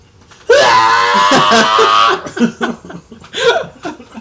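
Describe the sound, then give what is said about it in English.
A person lets out a loud, drawn-out imitation of an anime-style battle scream lasting over a second, then breaks into choppy bursts of laughter. “They say Nani and scream.”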